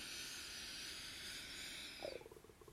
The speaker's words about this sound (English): And you can hear my stomach rumbling.